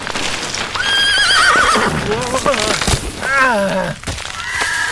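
A horse on a narrow path whinnies loudly several times, each call a shrill, quavering neigh that slides downward in pitch, with scattered thumps and rustling noise underneath.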